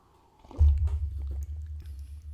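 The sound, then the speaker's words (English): A big gulp of a drink, not a sip: a heavy swallow with a low throaty rumble and a few wet mouth clicks over about two seconds. No one speaks. “I'm going for a solid gulp here, mate.”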